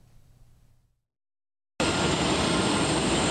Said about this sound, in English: A plane touched down at Taoyuan International Airport. This was no ordinary plane. It carried 400,000 doses of AstraZeneca vaccines donated by Poland. The EVA Air Flight BR66 arrived at 6:15 a.m. Sunday morning from Vienna.